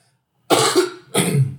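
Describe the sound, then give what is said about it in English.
Two loud coughs in quick succession, each a harsh burst with a wet, chesty rasp, separated by a brief pause, with no talking; a person coughing phlegm out of the lungs after quitting smoking. “I'm coughing because I'm getting all this phlegm out of my lungs because I don't smoke anymore.”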